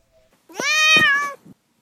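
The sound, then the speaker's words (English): A single drawn-out meow from a cat named Duarte, clear, rising then falling in pitch over about a second, with a brief soft trailing chirp at the end and no talking. “Speaking of controlling your edit, it's time for Duarte's Corner, where, of course, my cat Duarte will share his continued thoughts on the book.”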